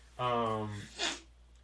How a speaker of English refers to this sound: It was a great sniffle.